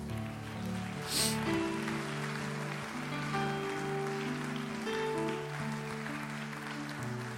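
An audience gives Jesus a hand clap of praise, clapping steadily, a dense crackling wash of many hands, over sustained organ-like chords that play throughout, with a brief brighter burst near the start.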